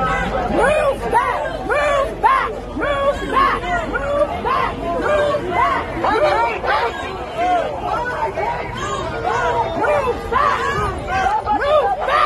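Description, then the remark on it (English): A protest crowd in Portland yells in a dense, overlapping roar of raised voices, loud and unbroken for the whole stretch, with shouts rising and falling over the steady hubbub, as someone in a press jacket yells at the Portland police to back up. “It's somebody with a press jacket in Portland yelling at the Portland police to back up, and they're backing up.”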